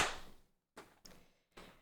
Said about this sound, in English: And then we'll do a clap sync in 3, 2, 1.